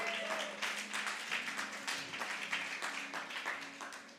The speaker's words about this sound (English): Come. Let us clap for her as she comes.